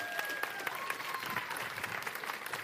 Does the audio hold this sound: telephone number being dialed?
no